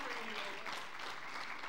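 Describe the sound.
A crowd applauds in a steady, dense wash of clapping that holds at an even loudness throughout, with faint voices murmuring underneath.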